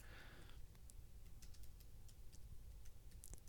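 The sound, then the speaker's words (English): Soft, irregular clicking of keys being typed on a keyboard, a scattered run of light taps over a low background hum, fairly quiet and with no one speaking. “Typing.”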